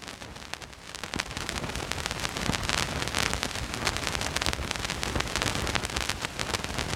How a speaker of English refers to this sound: Man, I love the crackle of vinyl. I don't know if you guys can hear that. Dusty as.